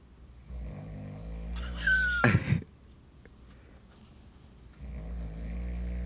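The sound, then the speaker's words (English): A person snores once in a loud, rattling burst that rises to a harsh snort, set against a steady low hum in otherwise quiet surroundings; no one speaks. “I've never heard you snore like that.”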